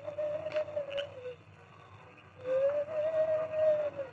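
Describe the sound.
The masked man, the Lone Ranger, imitates an owl's hoot as a signal to Tonto held in a hideout shack: two long, steady, mid-pitched hoots separated by a short pause, the second a little louder, with no talking.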